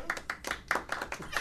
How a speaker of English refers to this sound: A smattering there's of applause. There's a lot of wankers in this audience. Smattering of applause.